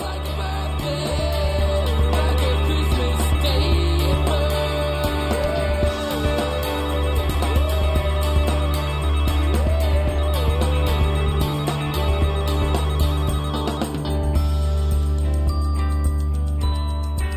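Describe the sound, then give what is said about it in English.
A telephone rings repeatedly inside a full, steady music track, its bright tinkling tones woven into the song's instruments rather than standing apart. No one speaks. “How much does the phone ring irritate you?”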